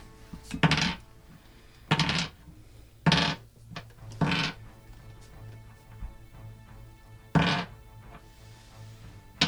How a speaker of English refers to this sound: Yeah, how many dice are you rolling back there? Well, it's 4d6 and another 3d6.